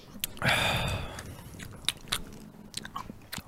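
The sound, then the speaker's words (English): Crunchy chewing and biting sounds of people sitting and eating Skittles candies, with irregular crackly bites and soft mouth noises. “Because we're just sitting here chewing Skittles.”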